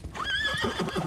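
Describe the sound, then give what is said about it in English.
The terrifying black horse of the Dullahan, the Headless Horseman, gives a loud whinny, its high wavering cry rising then trailing off, with soft thudding galloping hoofbeats underneath toward the end. No one speaks. “He gallops on his terrifying black horse, his head tucked under his arm.”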